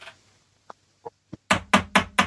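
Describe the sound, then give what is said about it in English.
Knocking on a boss's office door: three light, scattered taps followed by four loud, evenly spaced raps in quick succession, with no voices. “So knock on the door,”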